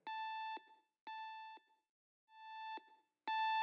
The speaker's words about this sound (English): get that alarm turned off now. I'm afraid I can't action that whilst there's still a Code 12 in play. But it's just a spillage. Do you really think that warrants putting this entire base on high alert?